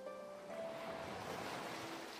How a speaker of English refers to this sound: As the waves head back out, you breathe in deeply, feeling the air nourish you as the waves nourish the sea. Then you exhale, watching as the waves crash against the shore.